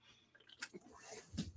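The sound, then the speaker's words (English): A quiet sip from a drink, with soft wet mouth noises, a brief slurp and a small swallow, and no talking. “Sorry, I just need a little sip there.”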